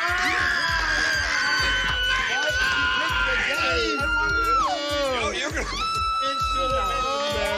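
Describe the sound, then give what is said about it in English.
A loud, sustained crowd of voices screaming and shrieking in high-pitched waves, close and overwhelming, with excited shouting mixed into the din throughout. “God damn, that's loud. That was screaming right in my ear.”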